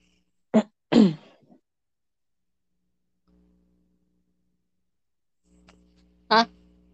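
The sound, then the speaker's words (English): A stifled burp: two short, muffled gulping bursts close together, then quiet with a faint low hum, and one more brief suppressed burst near the end. “I had a burp, so I was trying to...”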